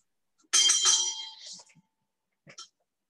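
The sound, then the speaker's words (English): A bright bell rings once, its shimmering tone fading over about a second, followed by silence and then a couple of brief, faint sounds. “There's a bell.”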